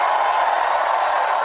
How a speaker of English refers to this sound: And the crowd went wild. Yes, they did.